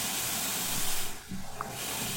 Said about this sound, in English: My index finger definitely hurts when it gets close to the steam of this boiling water.